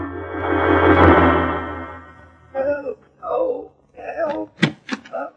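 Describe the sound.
A heavy carriage door, in front of a museum, creaks open with a long, drawn-out groan, then a man lying under a blanket inside lets out several short moaning and groaning sounds.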